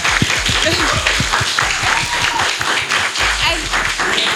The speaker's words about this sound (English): So thank you, everyone. Thank you so much to the amazing guests. Please do give them a round of applause.